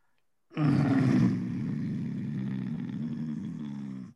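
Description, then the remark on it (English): A person imitates the growl of the Nicatra creature with one long, deep, rumbling snarl that bursts in loudly after a short silence, then holds steady and gravelly for several seconds. “Was that a timely growl from the Nicatra?”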